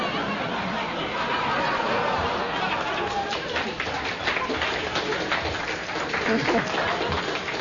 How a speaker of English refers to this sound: I don't know what that cheer is about. For or against? Which is it?